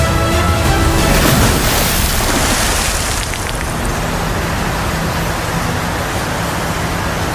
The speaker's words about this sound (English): Batman drove with night vision until he approached a waterfall. Rachel screamed as they splashed right through the waterfall and landed in the Batcave.